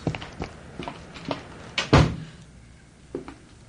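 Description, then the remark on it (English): A series of small metallic clicks and rattles as a key works the lock of the street door of the Crestview Arms, kept locked at night, then a heavy thunk as the door opens, followed by a couple of faint clicks. Fairly quiet, with no talking. “It's lucky they keep the street door locked at night.”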